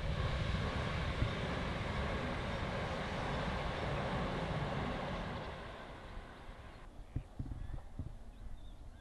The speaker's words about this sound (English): Now train's going past.